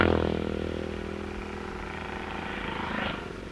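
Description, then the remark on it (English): A Norton racing motorcycle, number 36, roars past during a race with a flat, throaty drone, loud at first and fading slightly before a brief swell near the end, with no voices. “number 36, with a very, very flat sound, whose engine, R.J. Warburton from Stockport on a Norton”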